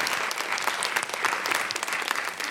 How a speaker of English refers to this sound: Big round of applause